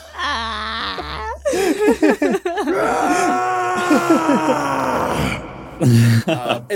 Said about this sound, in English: I would like to apologize for my scream there.